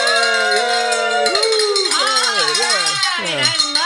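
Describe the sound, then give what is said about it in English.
A hand bell is rung to mark a donation, ringing steadily with bright, sustained metallic tones, then voices rise and fall loudly over the ringing. “But what that means is you get to ring up the bell. So pick it up and ring it.”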